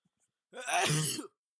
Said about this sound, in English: Feelings make him sneeze.